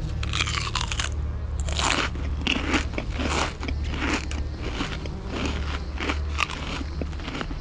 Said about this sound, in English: This cannibal chews with his mouth open. It is very annoying.